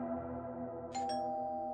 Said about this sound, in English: I rang the doorbell, and the door was open